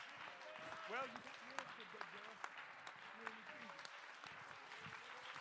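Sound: audience clapping hands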